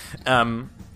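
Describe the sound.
A person imitates a sheep with a single short, wavering "baa" bleat, fairly loud, lasting under half a second with quiet moments on either side.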